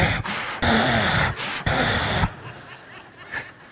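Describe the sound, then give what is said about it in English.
A voice imitates a child breathing loudly while hiding in a game of hide and seek: three long, harsh breaths in a row, followed by quieter, fainter breathing. “You can hear them breathing. They don't realize they got to breathe quieter.”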